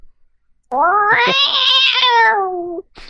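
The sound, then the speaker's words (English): A person imitates an irritated cat with one long, loud, drawn-out meow, a whiny yowl that holds steady for about two seconds and then cuts off abruptly. “Yes, that sounded like a cat that really didn't want to be stroked by its master.”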